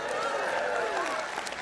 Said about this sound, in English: Oh, I'll beg for clapping. There ain't no doubt about it.